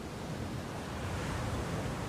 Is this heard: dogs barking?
no